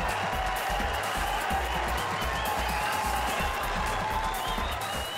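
A tennis crowd in Cincinnati cheering at championship point for Daniil Medvedev in a Masters final, a steady, unbroken roar that holds at an even loudness for about five seconds, with no clear individual voices or claps standing out.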